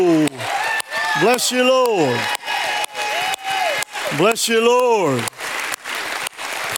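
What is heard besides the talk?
audience clapping hands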